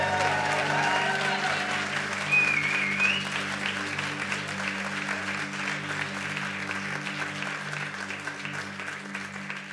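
An audience applauds steadily, a dense wash of clapping that holds its level throughout with a sustained low organ-like hum beneath, and a brief whistle or cheer near the start.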